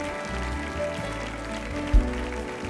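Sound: audience clapping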